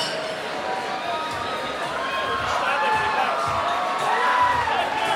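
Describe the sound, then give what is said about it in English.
A concert crowd cheers after a band's set as the band takes a bow and shakes hands with the front of the crowd: a dense, steady roar of many overlapping voices shouting and whooping, staying loud throughout and swelling slightly toward the end. “Crowd just love this band tonight.”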